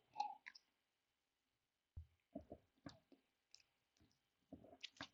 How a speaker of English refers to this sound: So as usual, I tend to sniff these things after this, we're getting into the reviews. And it's calmed down on the citrus front quite a lot. It now just smells kind of malty, kind of caramelly, kind of hoppy. I always also take another sip and